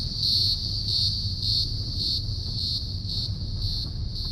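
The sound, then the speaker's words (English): Cicadas sing in a shrill, high buzzing chorus that pulses in a steady rhythm about twice a second, continuous throughout, over a low background rumble with no voices. “And even the sound of cicadas singing.”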